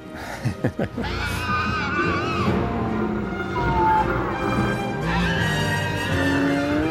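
Shrill, wavering squeals made by pulling dental floss from a Tom's of Maine dental floss box, used as a pteranodon scream, sliding up and down in pitch as they layer over a dense rumbling bed. A few sharp percussive hits open the sequence before the shrieks take over.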